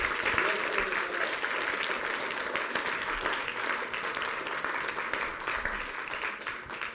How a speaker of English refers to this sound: Let's give the Lord a standing ovation.